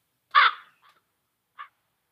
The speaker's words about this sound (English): Huh. Sounds like a bird. You'd think it'd be crickets. But it's a crow.